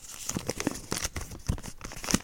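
Steady crinkling and rustling of a pile of small cut-up slips of paper with topics written on them, like a hand digging through them to pick one, with irregular soft crackles throughout and no voices.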